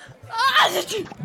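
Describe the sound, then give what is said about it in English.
A woman lets out a single sharp sneeze, a quick voiced intake rising into a loud, breathy burst that cuts off abruptly. “That's my old day's wages you just shot. A whole day's work. Gone. In one sneeze.”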